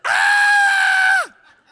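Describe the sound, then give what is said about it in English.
A man imitates the high-pitched, terrified scream he let out when a spider dropped: one loud, sustained shriek lasting over a second, then a quick downward drop as it cuts off. “And as it's being dropped, the moment I literally take my girlfriend at the time, my wife, by the shoulders, and I literally move her between me and that spider, and I scream like a middle school girl”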